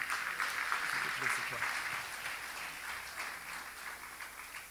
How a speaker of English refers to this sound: Oh, my God. I think that's a good place to clap, right?